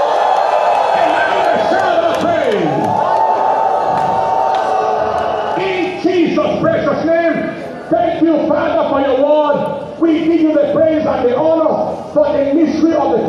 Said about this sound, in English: Who is the person about to experience the turnaround? Stand on your feet with a shout of praise.